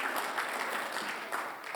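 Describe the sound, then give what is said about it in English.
An audience claps steadily for a couple of seconds for the Christmas season, a dense, even crackle of many hands with no voices over it. “We got some claps for Christmas season.”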